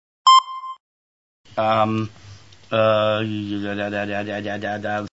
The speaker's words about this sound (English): Oh, that's your phone, isn't it? That's only an incoming text